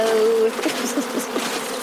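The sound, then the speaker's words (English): A dense, steady drone of many honeybees buzzing as bees on a person's thumb are shaken off, a continuous swarming hum with wavering pitch and no voices. “Right, now I'm just going to shake these bees off.”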